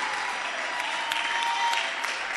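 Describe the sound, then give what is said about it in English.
A church audience claps for itself steadily, a dense wash of many hands blending into continuous applause at an even, fairly loud level, with no voices standing out. “Oh, clap proper for yourself.”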